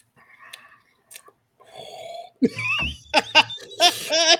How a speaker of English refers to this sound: Take a sip.